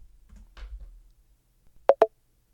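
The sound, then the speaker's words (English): A percussive confirm sound from the Thunk interface sound set, designed to feel like haptic feedback and tuned to device speakers: two quick, punchy plops in a rapid double-tap, with a short mid-pitched knock in each. A soft low rumble comes before them. “So here's in Thunk, here's confirm.”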